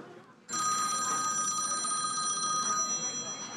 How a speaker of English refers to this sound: I love that ringtone. Ah, finally got it turned off.